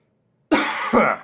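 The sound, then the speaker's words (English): Two quick, harsh coughs in close succession, loud, following a moment of silence, with no talking. “You know, I do have a mute feature I could be using every time I cough, and I call that out just to say I am not.”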